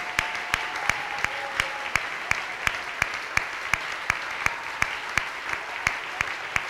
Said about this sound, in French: Acclamons, acclamons le Seigneur, acclamons. Let's clap for the Lord. Acclamons le Seigneur. Let's clap for the Lord. Acclamation pour le Seigneur.